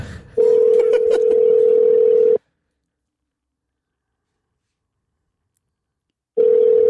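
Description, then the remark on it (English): A phone's ringback tone on an outgoing call: a steady, low-pitched buzzing tone lasts about two seconds, falls silent for roughly four, then starts again, with faint clicks at the outset. “Here, let's call this fucking...”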